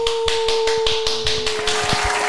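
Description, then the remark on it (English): Steady, rhythmic hand claps, about eight sharp, even beats in quick succession, over a constant low electronic hum with no talking. “But that's only like these claps are only if your team is still in the playoffs.”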